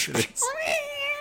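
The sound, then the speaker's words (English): A short noisy burst, then a single loud cat screech sound effect from a cat in a janitor's closet as hits are landing: a high, strained yowl that bends upward and holds for about a second, with no talking over it. “And for some reason, there's a cat in the janitor's closet as the hits are landing.”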